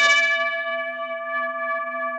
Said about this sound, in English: Well, it's time. Did you hear those bells? Again? Yep.